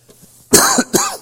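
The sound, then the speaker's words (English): Two quick, harsh, loud coughs in close succession, with a brief pause between them and no talking. “I've been fighting a cough here, and I've done well today, but I haven't talked all that much.”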